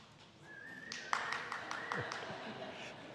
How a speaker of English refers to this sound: Desperate parents are applauding right there.